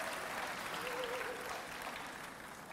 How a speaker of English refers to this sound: Come on, if you're from Jamaica, if you've got family roots going back in Jamaica, let's give our Jamaicans a round of applause. Come on.